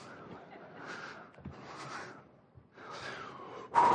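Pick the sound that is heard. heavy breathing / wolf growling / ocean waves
heavy breathing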